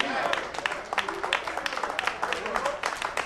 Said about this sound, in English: Ooh, listen to the hand claps. Is it the zombies? That's why y'all clapping like that?